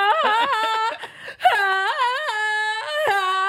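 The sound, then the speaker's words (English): A person's voice imitates the Tarzan jungle yell: loud, sustained, high-pitched warbling calls with yodel-like breaks, in two long phrases split by a brief gasp, with no other talking. “They're swinging from relationship tree to relationship tree like Tarzan. Oh! Yelling just like that.”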